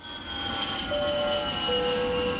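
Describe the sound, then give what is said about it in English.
A steady, continuous airplane engine drone heard from inside the cabin while flying over Adelaide, Australia, a broad low rumble with faint sustained tonal whines on top, moderately loud and unchanging throughout, with no voices. “I think we're flying over Adelaide, you know, in the next clip.”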